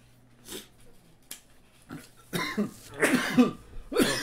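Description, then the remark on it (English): A series of harsh coughs comes in irregular bursts, starting with a few isolated ones and building into louder, clustered coughing fits toward the end, with no talking. “we're like coughing.”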